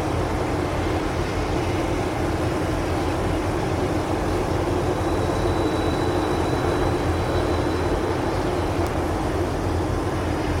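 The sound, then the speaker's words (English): The engine of a Curtiss JN-4D "Jenny" biplane, a wood-framed aircraft, drones steadily in flight, a dense low rumbling roar that holds an even loudness throughout, with a faint thin whine rising briefly in the middle and no voices. “Today we're going to be flying that baby right there, Curtis JN4D, also known as the Jenny.”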